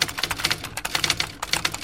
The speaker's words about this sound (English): But that's a keyboard from a computer. The manual typewriter had a distinct sound. It was kind of like this.